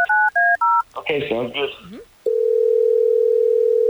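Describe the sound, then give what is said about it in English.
Three quick keypad beeps, a brief burst of a voice, then a loud, steady telephone dial tone that hums continuously to the end, as radio hosts at Hot 101.5 place a call on air. “Well, let's try to get her on the phone to pretty much verify what you're talking about right now.”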